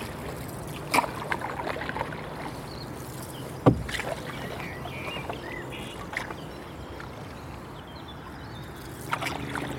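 Steady low water wash with occasional sharp paddle knocks and splashes as a canoe moves along the River Avon near Bath at dawn; faint bird chirps in the background, no talking.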